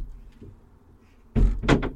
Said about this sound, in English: Oh, open one of the doors. Boat's a bit wobbly this morning. Trying to open the side door.